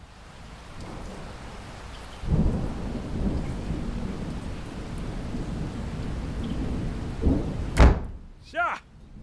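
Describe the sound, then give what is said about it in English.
A thunderstorm with steady rain hissing throughout at Holbeck House on the Shropshire border on the evening of 7 November, low rumbling thunder swelling in, then a sharp thunderclap near the end followed by a ringing, whistling tail. “Ah, ye Catholic gads, what a storm. Why, this is always rain on me.”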